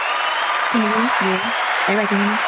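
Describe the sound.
Steady applause from an audience welcoming a special guest on the show TSA, the Toxic Service Announcement, fills the whole clip with a dense, even patter, while a couple of short voiced calls or cheers rise briefly over the clapping.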